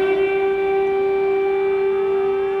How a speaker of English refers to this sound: The people of Ukraine woke this morning to the sound of explosions, followed by the haunting sound of sirens warning citizens to take cover.